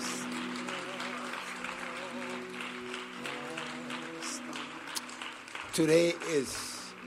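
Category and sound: crowd, audience clapping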